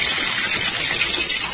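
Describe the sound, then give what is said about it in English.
Water pours steadily into a bathtub, filling it about half full for an experiment, a continuous, even rushing splash that holds at a constant level throughout with no voices. “I think that's the about amount of water Hart drowned in.”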